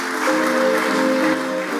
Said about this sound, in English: Give the Lord a clap offering, someone.